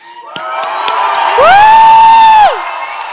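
A crowd cheers loudly and continuously, voices whooping and shouting together, with one sustained high cheer swelling in the middle before fading back into general crowd noise.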